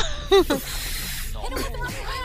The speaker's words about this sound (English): Cat fight, literally!